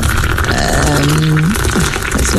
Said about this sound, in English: It's enough now. It's enough. You're overflowing. It does make you want to go to the toilet. All the tea sound effects do slightly sound like your urinals, don't they? They really do.